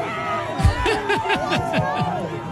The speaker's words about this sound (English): the Philadelphia Eagles center ripped off his t-shirt in the freezing weather and jumped down from the VIP suite at Highmark Stadium into the stands. I mean, listen to this crowd just go crazy for him. This is him crawling into the stands, shirtless.